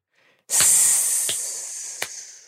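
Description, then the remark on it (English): A voice imitates a vampire's hiss: one long, sharp, airy hiss that starts abruptly and slowly fades over about two seconds, broken by a few faint clicks, with no talking. “Hissing from the back corner, yeah, where like the one bulb isn't working.”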